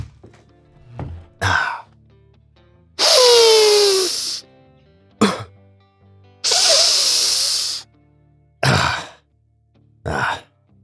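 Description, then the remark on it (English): Loud Afrin nasal decongestant spray pumps and hard sniffs: two long hissing inhalations with several short, sharp snorts scattered around them, no talking. “Just a little Afrin, folks.”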